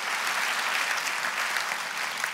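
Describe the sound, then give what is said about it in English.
Steady applause from an audience, cued by the speaker at the end of his comedy routine: a dense, even patter of many hands clapping at once, sustained without a break and with no voices over it. “I just cued my own applause.”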